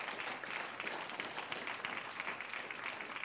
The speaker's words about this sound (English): Amen, amen. Clap your hands to the Lord and give him some praise.